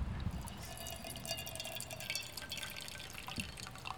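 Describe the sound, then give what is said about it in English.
A steady trickle of steaming hot water poured slowly in a circular motion over coffee grounds, with soft dripping and gurgling throughout and no voices. “You just want to pour it slowly in a circular motion.”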